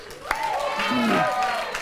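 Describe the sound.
An audience applauds steadily for a volunteer, a dense wash of clapping lasting the whole moment while a man's voice speaks loudly over it.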